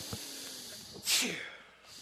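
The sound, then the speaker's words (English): A single short, hissy exhale of cigar smoke through the nose, a breathy snort-like puff lasting about half a second, with faint soft rustles before it. “Blow a little through your nose on that one.”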